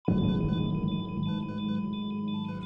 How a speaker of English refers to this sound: The machine started beeping, and it woke me up. His blood pressure and his heart rate started going down.